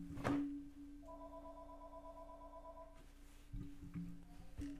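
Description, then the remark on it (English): An electronic phone ring sounds once, a steady two-tone burst lasting about two seconds, over a constant low hum with a few thumps and clicks before and after. “Phone ring, ring, ring, dude.”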